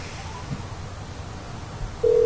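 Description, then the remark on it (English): Low background rumble, then near the end a loud, steady telephone ringing tone cuts in abruptly and holds while a phone call is placed to a friend, like a call waiting to be answered. “We're calling our guy here.”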